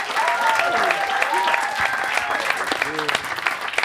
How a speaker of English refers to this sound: Did you guys have fun with us tonight? Hell yeah. How about another round of applause for